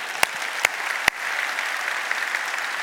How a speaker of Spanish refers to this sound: Aplausos al Señor.